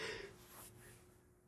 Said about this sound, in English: Excuse me. I'm leaving that in. I'm leaving that yawn in. Excuse me. That was super rude of me. I'm sorry, listener, that I yawned in your ear like that.